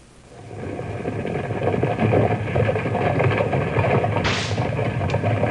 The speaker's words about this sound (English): There go 12 mules pulling two large wagons full of a special sand used by the Mountain Refining Company to make a particular kind of glass. 12 fine mules driven by their burly master, Skinner McNeil.